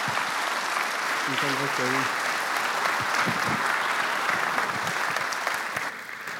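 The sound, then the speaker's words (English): A church audience applauds steadily to welcome a speaker, a dense, even wash of clapping that holds for several seconds before easing slightly at the end, with a few faint voices mixed in. “Would you welcome him with some applause?”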